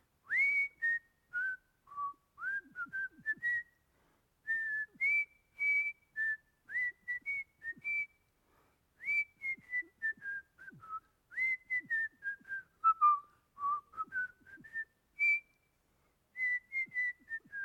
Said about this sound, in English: But the one that I remember most is this one. And I don't know if I can get my lips, my whistle to work, but it goes something like this.